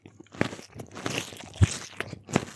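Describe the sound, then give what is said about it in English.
Muffled crunching, a handful of irregular crackling bursts spread over a couple of seconds, like something being bitten or crushed, with no voices. “A terrible, muted crunching sound vibrated through the peeve.”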